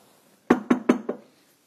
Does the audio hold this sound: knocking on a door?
yes